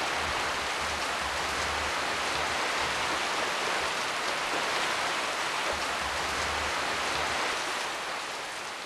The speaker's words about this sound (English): During the rainy season, heavy rainstorms continue to flood the entire church premises.